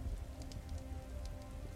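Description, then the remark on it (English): Steady rain patters on hard surfaces in the streets, a soft continuous wash with scattered drop ticks, slightly muffled, heard through the wooden slats of a shuttered window. No voices. “The window is shuttered, but the sound of rain in the streets is still audible beyond its wooden slats.”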